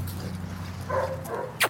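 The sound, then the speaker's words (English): A dog gives a couple of short whining yips followed by one quick, sharp bark, not loud, over a steady low background hum; one of two large dogs playing outside in front of a pickup truck at an apartment complex. “I find Laurie with two massive dogs. Right here. They're playing outside in front of her pickup truck.”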